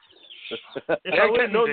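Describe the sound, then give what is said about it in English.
Young chicks peep in high, thin chirps, and a person's voice soon talks loudly over them. “They're not big enough for chicken wings yet.”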